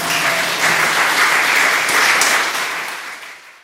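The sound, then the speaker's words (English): A crowd claps steadily after a lecture, a dense burst of many hands from a large audience, loud and sustained before gradually tapering off at the end. “Thank you. You can clap.”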